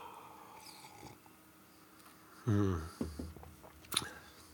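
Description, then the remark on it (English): Mouth sounds of someone taking a sip of a coffee beer, with a low murmur, a few wet swallowing clicks and a sharp tap near the end. “I'm going to have another sip.”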